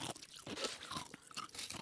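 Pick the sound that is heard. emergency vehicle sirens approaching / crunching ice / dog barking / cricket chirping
crunching ice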